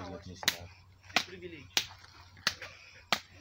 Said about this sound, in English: Is that the best you can slap?